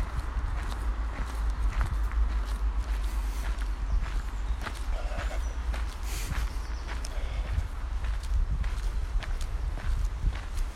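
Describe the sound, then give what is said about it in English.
Steady footsteps walking on the ground, a continuous run of soft crunching steps at an even pace, over a constant low rumble with no talking. “And make this podcast as much about my feet on the ground here as I walk, just as much about that as anything I might say.”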